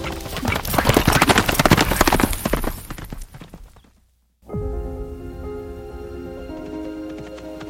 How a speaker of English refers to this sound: No one noticed the royal messenger thundering past on her horse.